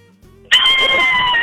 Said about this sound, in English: Give us your best, scariest Halloween scream ever and ever, and then we'll get some information from you.